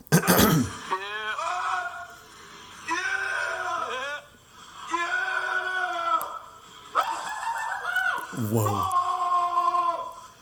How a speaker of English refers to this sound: My kids are obsessed with that scream of joy. Like, where he goes, they're like, they both have asked me multiple times, how does he do that? How does he make that sound? They want to know how he makes the sound,